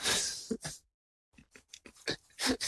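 A dog pants in quick, breathy bursts, stops for a moment of silence, then resumes with a run of rapid, uneven huffs and pants.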